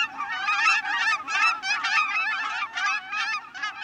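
A flock of Aleutian cackling geese, a subspecies of cackling goose, calling in a dense, continuous chorus of high, yelping honks, many voices overlapping in quick bursts, fairly loud, with no talking.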